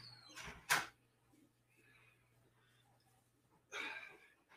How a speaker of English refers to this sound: Here he comes. I hear the door.